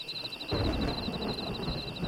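A Christmas thunderstorm with lightning lighting up the sky: thunder rumbles in suddenly and rolls on, deep and loud, over a wash of rain, while a steady high-pitched drone hangs in the background throughout.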